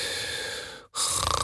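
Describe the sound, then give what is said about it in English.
A person imitates snoring: a long, rasping, breathy inhale, a brief pause, then a second rougher snort with a rattling, pulsing texture. “So, snoring is very rhythmical, yeah?”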